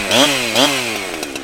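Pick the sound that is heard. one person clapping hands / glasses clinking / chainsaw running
chainsaw running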